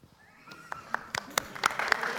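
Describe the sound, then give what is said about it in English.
Scattered audience clapping: a handful of sharp, irregular claps that grow slightly louder and more frequent over two seconds, with faint indistinct voices beneath. “Don't clap that.”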